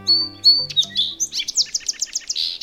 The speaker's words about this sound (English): For most songbirds, like this song sparrow, learning their own species song is a straightforward proposition.